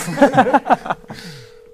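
A steady, single-pitched telephone tone hums for about a second as a call is placed to a fighter's coach, after a burst of chuckling voices, continuing at moderate level beneath a trailing bit of talk.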